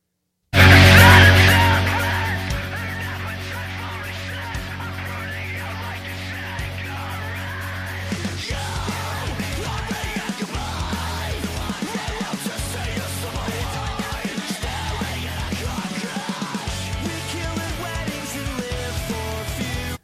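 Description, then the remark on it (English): A loud screamo rock song plays continuously, with harsh screamed vocals over dense, distorted guitars and steady pounding drums that keep a driving rhythm throughout. “There's a metal scream and there's a screamo scream, and the screamo scream died”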